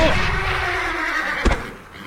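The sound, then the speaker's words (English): A startled horse whinnies loudly and shrilly for about a second and a half, followed by a short thud and a fading, breathy tail. “My horse got startled, but the fall didn't hurt.”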